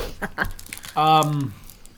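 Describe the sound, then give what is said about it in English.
Short bursts of crinkling plastic from a snack bag being twisted and tugged by someone trying to open it without scissors, followed by a brief strained vocal sound from the person struggling with it. “Next time we do this, we should have, like, a scissors down here or something to eat. Fucking cut these ones open that we can't get.”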